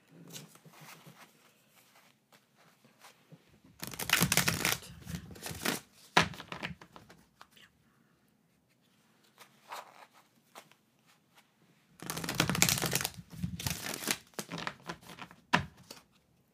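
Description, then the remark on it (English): A Lenormand deck of cards being shuffled, with two loud riffling bursts a few seconds apart and quieter handling clicks between them; no one speaks. “And then I'm going to shuffle my cards.”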